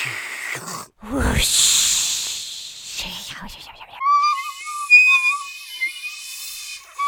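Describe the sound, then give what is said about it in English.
Breathy groans and hissing vocal noises give way to a clear, steady whistled theme song for the Grim Reaper, a short melody of sustained and wavering notes lasting a few seconds. “Did you like my theme song?”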